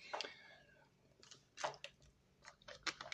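A plastic water bottle cap being twisted tight, giving a series of irregular crackling clicks and creaks, fairly quiet, with no voices.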